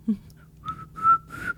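A person on a trail whistles a short, simple tune, a few sustained notes rising slightly toward the end, with a faint low hum underneath and no talking.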